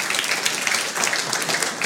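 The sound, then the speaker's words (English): A crowd breaks into steady applause, dense overlapping claps forming a continuous, fairly loud wash of sound with no one speaking over it. “Maybe that'll make you clap.”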